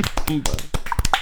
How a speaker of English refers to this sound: And the winner is Call of Duty. Call of Duty wins it. You're all bummed up. Round of applause for our winner.